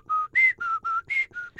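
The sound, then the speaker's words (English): Someone whistles a short, eerie horror-movie theme melody: six crisp notes in a quick, even rhythm, jumping between a lower pitch and a higher one, with no talking. “Yeah, that theme, that Halloween theme is...”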